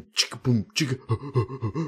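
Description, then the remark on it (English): A voice imitates a beatboxer's trademark breathing hook, sharp airy inhales mixed with quick voiced pulses in a steady, repeating groove, moderately loud. “That was like his hook that he always did, the breathing thing.”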